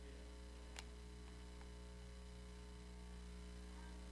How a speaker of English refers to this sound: I didn't mean to create so much static.